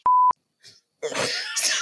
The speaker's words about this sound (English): Sorry, that burp was so good. And then I tried to just keep going, but I was like, that's a good one. That was a good, like, well-rounded.